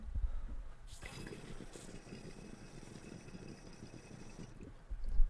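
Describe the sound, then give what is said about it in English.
Water bubbles and gurgles steadily inside a glass smoking piece as someone pulls on it, with soft knocks at the start and end and no talking. “I love the bubbles, how they drain down that.”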